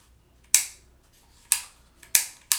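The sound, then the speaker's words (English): Four sharp metallic clicks from a KP-15 rifle lower receiver mechanism being handled, crisp, spaced unevenly about a second apart with quiet between them and no voices. “You're just clicking now”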